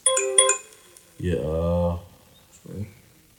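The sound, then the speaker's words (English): A phone rings with a short burst of bright electronic ringtone notes as mom calls, loud, then stops as a person starts talking. “She's gonna call again. It's mom.”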